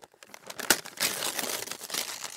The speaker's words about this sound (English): Ava ripped open the package and inside was ….